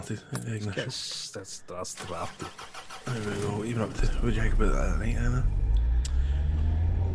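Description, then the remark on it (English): People talk, then partway through a car engine cranks and catches, settling into a loud, steady low rumble that continues under the voices to the end. “So let's get this car started.”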